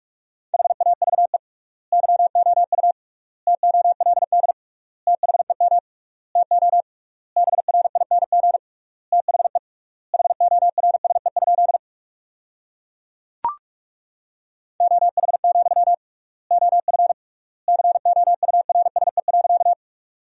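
Rapid Morse code practice tones at 45 words per minute with triple word spacing, sending sentences from the top 500 words. A single steady mid-pitched tone forms dots and dashes grouped into short words, separated by wide silent gaps, with one sharp click partway through. No voices.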